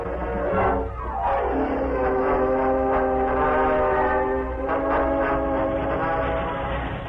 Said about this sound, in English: Meanwhile, a short distance from Modoc City, Cliff Gunnison hurried through the empty passenger cars and joined Gopher in the engine cab of a speeding train.